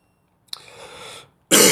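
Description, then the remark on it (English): A raspy cough breaks out with a sharp hack and rough, breathy drag, then after a brief pause a second, much louder cough bursts out. No one speaks. “I keep coughing, man.”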